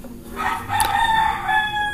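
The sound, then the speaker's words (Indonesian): A rooster crows once in a long, drawn-out call with strained, harmonic tones over a faint outdoor background, with no talking. “Wah, langsung disautin sama ayam.”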